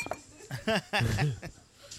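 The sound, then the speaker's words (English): Several quick clinks of glasses tapping together in a toast to kids, bright, with voices and light chuckling mixed in around them. “Cheers.”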